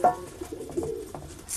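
An injured pigeon, lame in one leg, coos softly, a low, throaty burbling that rises and falls in a few short murmurs with no voices present.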